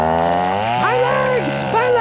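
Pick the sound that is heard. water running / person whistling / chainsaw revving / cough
chainsaw revving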